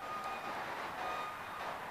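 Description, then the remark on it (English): A small electronic alarm beeps with thin, high tones, fairly faint against a steady wash of background noise, with no one talking. “Little alarm going off.”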